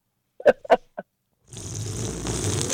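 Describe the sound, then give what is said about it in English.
Three quick slurping sips of a zero-sugar soft drink that smells like cherry limeade, followed by a steady, fizzy hiss that rises and holds to the end, with no talking. “One more sip.”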